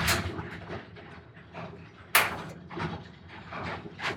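The door of a dusty old garage rumbles and rattles as it comes down, finishing with a single sharp bang partway through, then more low rattling and scraping afterward. No one speaks.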